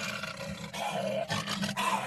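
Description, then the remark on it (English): A deep, sustained roar like a lion's, made by a man growling into a trash can, rumbling loudly and continuously with a few brief surges across two seconds. “So if you went to go see Lion King over the weekend and you heard the roars of the lion, that was actually a guy growling into a trash can.”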